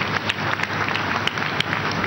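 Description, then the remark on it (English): An audience applauds, a steady dense wash of many hands clapping at once, with a few sharper, louder claps standing out from the sustained noise. “Clap for her.”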